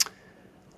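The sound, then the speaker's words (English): A crisp click or two on a computer keyboard at the very start, sharp and bright, then only a faint quiet background for the rest of the moment. No talking. “Like typing on the computer while I'm podcasting.”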